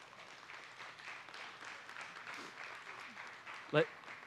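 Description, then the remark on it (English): A church audience applauds the married men standing in the room, in a steady, dense wash of clapping that holds evenly throughout, with murmured voices mixed in and one sharp, louder clap or knock standing out near the end. “And would you give them, church, a round of applause?”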